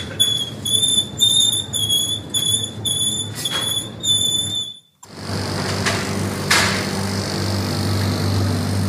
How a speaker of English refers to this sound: That first one was a wheel from a trolley. That's a lovely fridge we found.